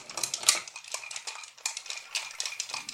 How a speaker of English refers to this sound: So we're going to stir it because it's a Manhattan. We're going to stir this thing until it is freezing cold.